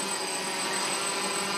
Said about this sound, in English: An unmanned aerial vehicle, better known as a drone, able to project vision onto the sides of buildings. Tonight we're trialing our experimental projector drone.